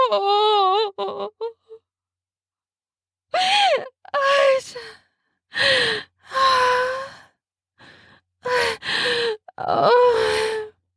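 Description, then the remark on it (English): A woman's breathy voice gasps repeatedly during orgasm, sharp intakes blending into voiced sighs and groans, about eight bursts separated by short pauses, with no words spoken. “I gasp.”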